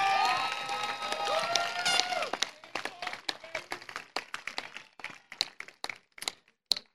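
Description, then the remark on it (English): Audience applause at the 2016 Napa Valley College graduation for faculty, counselors, librarians, classified professionals and administrators: a dense wash of clapping mixed with crowd cheering that thins into scattered individual claps before fading to a few final sharp ones. “So could you please give them all a round of applause?”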